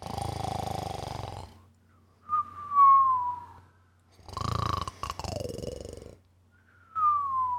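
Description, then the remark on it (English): Loud cartoon-style snoring of an elephant: two rough, rumbling inhales, each followed by a high descending whistle on the exhale, repeating in a slow rhythm with no talking. “The elephant was snoring loudly.”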